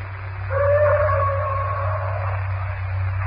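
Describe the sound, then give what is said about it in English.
A bull ape roars miles away at night, one long, moaning, wavering cry that swells and slowly fades over a steady low hum, with no voices present. “That bull ape is certainly doing a lot of boasting tonight. He sounds very close, John.”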